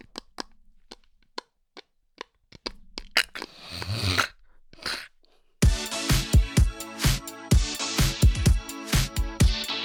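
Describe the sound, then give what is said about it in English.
Sharp clicks and gritty crunches of teeth gnawing on a Queerty Award trophy, irregular and sparse for several seconds, before loud, busy music with heavy beats cuts in. “And now the sound you're about to hear is me chewing on the Queerty Award.”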